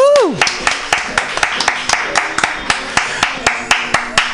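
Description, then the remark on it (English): Steady, rhythmic clapping from an audience, crisp and fairly loud over a dense background of crowd noise, opened by a brief falling vocal whoop. “Let's have a nice round of applause”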